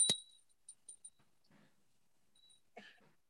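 A small elephant bell rings out with a bright, high-pitched clang, then jingles three more times more softly, followed by a faint chime and some light rustling. No one speaks.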